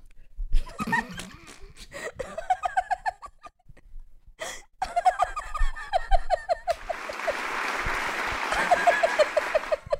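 Bursts of chuckling and cackling laughter give way to a steady, loud round of clapping for the last few seconds, with more laughter carrying over the applause.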